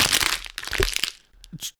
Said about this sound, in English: This is acceptable to crush water bottles now in Utah. Well, it's not just acceptable, but it's... preferable.